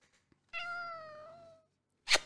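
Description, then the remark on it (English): A single drawn-out meow from Oliver, a male pet cat, clear, lasting about a second with a steady tonal pitch, followed by a brief noisy rustle or huff. No one speaks. “Look, these people buy you cat food. Say hi, everybody.”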